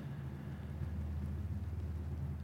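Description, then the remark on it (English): A logging truck on a road half a mile away rumbles steadily in the middle of the night, a low, continuous drone in absolutely still air with no other sounds over it. It stays faint and even throughout, heard from far off. “That's a logging truck. The road is a half mile away.”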